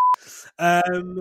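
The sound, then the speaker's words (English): A single short, loud, steady censor bleep cuts in at the start, then breaks off, followed by a voice talking. “I'm gonna beep it. Wait, so do you beep curse words now?”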